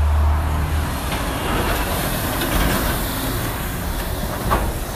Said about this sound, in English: Sorry about that. I had to let the truck pass.